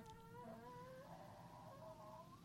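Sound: cat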